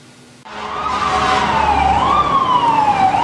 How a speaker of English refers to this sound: As we're walking down the street, we heard an ambulance coming into the neighborhood. Someone must be getting hurt or getting very sick.